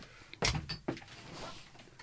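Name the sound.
door opening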